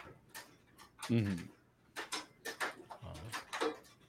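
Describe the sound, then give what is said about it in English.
Hail patters down in an irregular run of sharp, crisp taps and clicks, moderately loud, with a brief murmur of a voice showing through partway. “Yeah, that does definitely sound like it's hailing down on you.”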